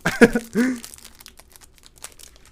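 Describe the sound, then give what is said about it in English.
A loud crinkle and tear of a plastic quinoa crunch snack bar wrapper being pulled open, two sharp bursts followed by softer scattered crackles as the packaging settles. “Trying to open mine right now. It's like a crunch bar.”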